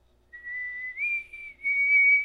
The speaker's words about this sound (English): Damn, you can whistle like a motherfucker, huh? I can't whistle.